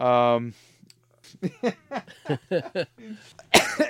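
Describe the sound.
A single sharp cough, caused by pollen, bursts out near the end, following a stretch of voiced vocal sounds and speech-like murmuring.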